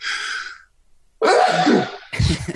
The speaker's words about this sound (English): Bless you again. I was waiting for the second sneeze.